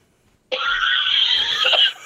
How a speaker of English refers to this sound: He's coughing. He's quite sick. Sick boy.